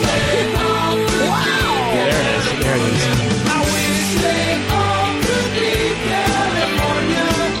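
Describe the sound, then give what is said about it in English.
A loud rock track with pounding drums and dense guitars, a singer letting out a long, rising scream that swoops over the thick, steady wall of instruments. “Here comes the scream.”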